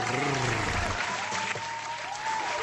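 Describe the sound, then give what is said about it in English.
A crowd applauds steadily for a few seconds, a dense, even wash of clapping that holds its loudness throughout, with faint tonal sounds running underneath. “so let's hear it for”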